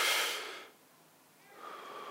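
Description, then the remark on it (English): A slow, deliberate breath: a loud airy exhale fades out, a brief pause follows, then a softer inhale begins. No one speaks. “The very fact that you're breathing right now is the presence of God.”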